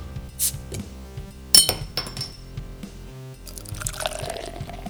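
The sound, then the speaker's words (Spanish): Lager beer made with corn is poured into a glass, starting with a sharp clink of glass and followed by a steady, fizzy splash of liquid that builds into a foamy hiss, with no talking. “Pues vamos a echarle a ver qué tal.”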